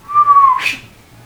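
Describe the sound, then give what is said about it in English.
A single whistled note, steady and fairly loud, slides slightly downward then ends in a soft breathy rush, a person mimicking an arrow flying past. No talking. “And as he pulls the bow back, you hear a slight whistling noise, and then.”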